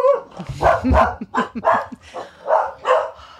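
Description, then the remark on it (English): Two pet dogs bark excitedly at slight movement outside in a rapid, overlapping run of yaps and woofs, fairly loud, with no talking over them. “So those are my two dogs. They have no manners and they get excited at the slightest movement outside.”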